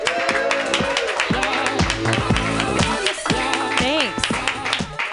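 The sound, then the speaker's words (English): An audience claps loudly and steadily throughout as comedian Chloe Fineman is introduced, with cheers and whoops rising over the dense wash of applause. “Your job, you guys, is to clap wildly like you've never clapped before.”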